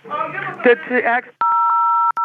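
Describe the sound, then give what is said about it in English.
A voice talks briefly, then a loud phone keypad tone sounds as buttons are pressed on a phone, held for most of a second, cuts out for an instant and starts again. “Well, you're pressing a lot of buttons into the phone.”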